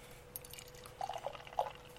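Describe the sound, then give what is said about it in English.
Red ale glugs from a can into a glass, a soft pour with a few gurgling bursts toward the end and a faint fizzing hiss, no one speaking. “All right, and the pour.”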